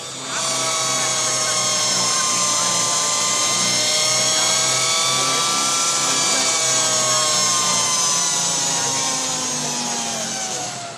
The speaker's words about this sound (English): So I'm going to take that back. I originally said it did sound like a drill, but I'm going to take it back. It sounds like a circular saw.